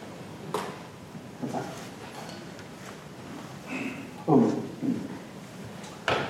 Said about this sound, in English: So everybody shift in your chairs, get it all out of your system.